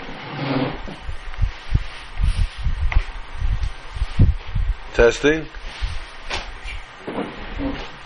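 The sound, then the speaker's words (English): Steady hiss with irregular low rumbling thumps, like air from a small fan buffeting a microphone, continuing under a person speaking briefly. “Okay, what a little fan can do to you.”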